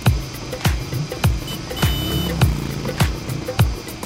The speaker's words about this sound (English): the people in the cars and the bikes and the auto rickshaws seem to be driving in all different directions, like bumper cars